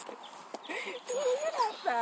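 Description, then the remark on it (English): A dog whimpers while being carried, a string of thin, wavering whines that slide up and down in pitch, rising toward the end over a faint background hiss. “Or, actually, I'm losing weight just carrying this damn dog.”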